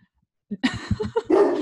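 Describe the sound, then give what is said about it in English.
A dog named Coke barks at something it sees outside in a rapid, agitated series of sharp barks, ending in a longer, higher-pitched whining bark, loud against an otherwise quiet background. “My dog sees something outside and he's not having it.”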